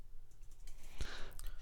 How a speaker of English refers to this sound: You do it. You click enter, but just don't spill anything.